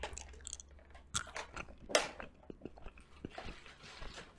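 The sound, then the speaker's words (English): Someone bites down on two hard candies at once, one on each side of the molars, and chews, with irregular crunchy cracks, one sharp loud crunch midway, then a run of softer, wetter chewing sounds. No one speaks. “I feel like you can bite them at the same time.”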